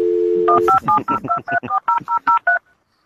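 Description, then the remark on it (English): A steady dial tone briefly hums, then a rapid, evenly paced run of about eleven touch-tone keypad beeps plays as a landline number is dialed, ending in silence. “So they're, you guys they're talking to each other on the phone. On his landline.”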